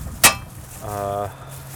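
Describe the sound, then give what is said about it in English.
A single bright metallic clink of coins rings out sharply as coins are put into a water machine outdoors, followed a moment later by a short, low voiced hum. “All right, so I'm distracted again because I am having to put the coins into the machine.”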